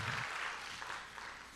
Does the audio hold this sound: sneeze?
no